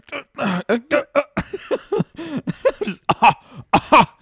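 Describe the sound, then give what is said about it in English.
A person fake-coughs in a rapid string of about a dozen short, forced bursts, fairly loud, sounding deliberately exaggerated rather than a genuine cough. “Fake coughing.”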